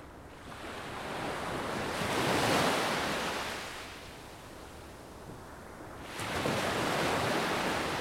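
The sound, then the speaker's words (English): Waves break on a beach on the Strait of Georgia in a steady hiss of surf, swelling into two loud rushing crests, one early and one near the end, with a softer wash between them and no voices. “So you're down there now finally at the beach, and can you now paint a picture of what you see?”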